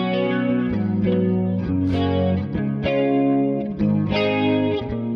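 An electric guitar plays a sequence of ringing chords with a lush, shimmering chorus effect and a wash of reverb, sustained and fairly loud with no voices.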